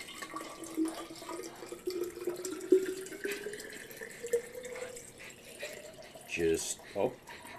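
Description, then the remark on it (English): Water runs steadily from a tap into a container during a water refill, a continuous pour with small splashes and a brief clatter near the end, while muffled voices murmur in the background. “We're doing a water refill here.”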